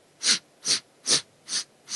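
Short, airy sniffing breaths from a segmented balancing-breath exercise, inhaling in four sniffs, evenly spaced in a steady rhythm of roughly two per second, each a brief hissy burst with no talking.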